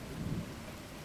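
Steady rain hisses across the whole moment while a deep, muffled thunder rumble swells briefly near the start and fades back into the downpour. No voices.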